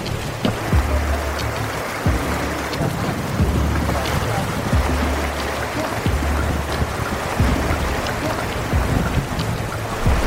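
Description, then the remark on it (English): A small boat motors across choppy water to the other side as water gets inside the boat, with a steady engine drone, slapping waves and strong wind buffeting the microphone throughout, loud. “The boat is sinking.”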